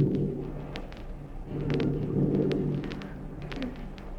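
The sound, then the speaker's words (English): A deep, rolling thunder rumble fills the background while a sharp crackle of rain patters over it, steady, with no one speaking; heard at night from inside a car at Yosemite National Park. “And before we could nod off to sleep, we heard a clap of thunder, and it started to rain.”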